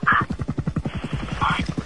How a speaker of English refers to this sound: Did you guys hear that helicopter?